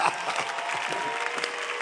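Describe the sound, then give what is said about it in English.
An audience claps hands together in a dense, steady patter of many overlapping claps, fairly loud and continuous throughout, with no clear voices above it. “Oh, clap your hands.”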